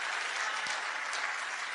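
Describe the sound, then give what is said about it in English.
An audience claps together for God in a morning service, a steady, dense wash of applause that stays level throughout, many hands blending into one continuous sound with no voices standing out. “Can you give him a great big hand clap this morning in the house?”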